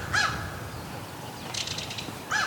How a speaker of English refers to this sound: Oh, what was that? May have just been a tree squeak. Nope. We got a crow.